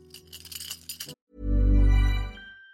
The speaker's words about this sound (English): I don't have the ocarina, but I have a set of keys. I'm going to jingle a set of keys. Be nice and friendly to your dog's ears.